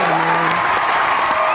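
A short burst of steady crowd applause, dense and fairly loud throughout, with a few voices and cheers mixed into the clapping.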